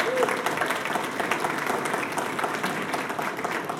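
Steady applause from a church audience for a pastor, a dense, even wash of many hands clapping at once with no breaks or voices rising above it.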